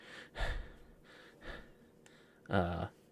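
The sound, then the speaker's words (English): A voice imitates the heavy, labored breathing of a wounded police officer: two breathy huffs followed by a louder, voiced gasping exhale, with short pauses between them. “But this officer's breathing heavily.”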